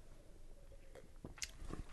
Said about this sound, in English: You get probably the best picture of straight up Belgian quad. Getting, I got to get another sip. It so much is changing that it's hard to remember what you want to talk about at the beginning of the taste.